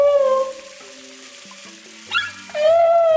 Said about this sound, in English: From the depths, it makes a sound that you can hear through the hull of a ship. It's a humpback whale, and it's the time now of their breeding season.